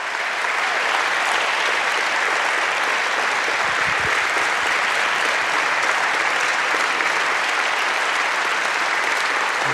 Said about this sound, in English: Come on, church. Put a standing ovation on that right there, everybody. Come on, with all of your passion, clap your hands in honor to these veterans.